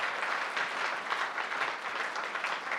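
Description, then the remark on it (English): An audience applauds the band, audio engineers and volunteers in a steady, dense round of clapping that holds at an even level for a few seconds, with no voices standing out. “Very familiar with, yes, give them a round of applause, guys.”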